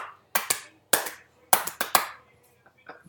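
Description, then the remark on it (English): Sharp hand claps come in a few uneven bursts, around eight crisp smacks in all, loud and snappy with brief pauses between groups, then fade to faint murmuring. “Glass breaking. And the clappies.”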